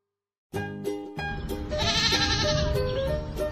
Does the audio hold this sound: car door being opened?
no